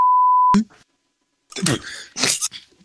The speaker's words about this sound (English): So like I said, I told y'all I would at least have him beep something at least once for me.